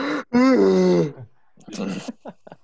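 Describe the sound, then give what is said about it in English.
A person lets out a long, loud voiced yawn that slides downward in pitch, with a quick breath before it, followed by some soft murmuring and short rustly sounds. “Is it your yawn? Because you're going to yawn again?”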